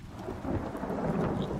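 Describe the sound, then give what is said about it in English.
Low thunder rumbles steadily beneath a dense wash of heavy rain, a continuous loud storm texture with no distinct breaks and no voices. “You're covering up the sound of footsteps with the sound of thunder.”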